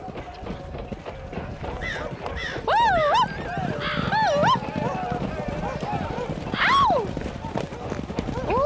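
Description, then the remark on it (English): A horse gallops past carrying a rider heading out to stop an enemy attack on a camp, its hoofbeats a rapid, steady drumming of dull thuds, while wavering high-pitched cries rise and fall over the pounding throughout. “My father passes me on horseback, out to stop the enemy attack.”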